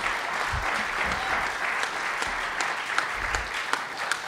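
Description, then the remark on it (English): An audience in Indy applauds Soma Church and Day Spa steadily, a dense wash of many hands clapping with no pauses, moderately loud, with a few sharper individual claps standing out from the mass. “Hey, let's clap it up for Soma Church and Day Spa.”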